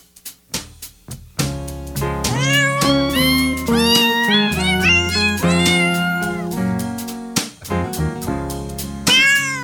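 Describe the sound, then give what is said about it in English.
Cats meowing over a musical backing, their rising and falling cries repeating in a steady, song-like pattern. The meows are loud, with no talking. “The cats on playing the music, that just makes you smile.”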